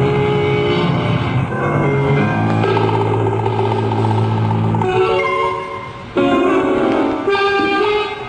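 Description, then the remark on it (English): A loud motorboat engine on a lake drones steadily, its pitch surging and shifting with strong humming overtones as it races along. No one speaks. “That's Mark Howgate in that boat.”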